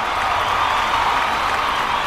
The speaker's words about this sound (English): The crowd roared as one, a multi-being organism with enough power to shake the walls.